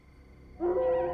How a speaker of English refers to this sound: Are you kidding me? Was that a wolf, Oscar?